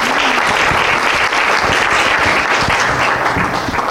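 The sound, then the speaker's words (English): Loud, sustained applause from a large audience as a man is called up on stage, a dense wash of clapping hands that stays steady throughout with no voices standing out. “Give him a big round of applause here.”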